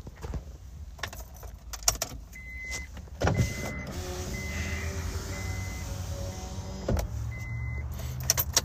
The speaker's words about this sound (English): It's fucking hot in here. That's why, like, I had to roll the window down.